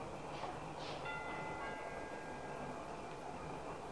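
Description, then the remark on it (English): A doorbell chime sounds once at a house above the Sunset Strip at 11:27 p.m., its ringing tone lingering and slowly fading over a steady background hiss, fairly quiet and with no one talking. “We rang the bell and waited.”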